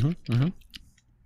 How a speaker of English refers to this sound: Can you hear the saliva in my mouth? Hang on, I need...